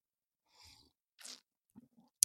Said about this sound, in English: Coffee sip.